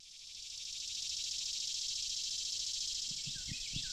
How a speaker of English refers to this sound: Walk down one of the paths under the black locusts, red maple, and tulip poplars here, and the chattering cicadas nearly drown out the calls of the birds.